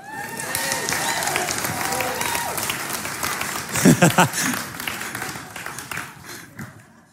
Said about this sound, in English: And it was awkward because it kept going. Did you feel that? It's like, I'm going to clap until everybody else claps, and then nobody else clapped. Let's just all clap.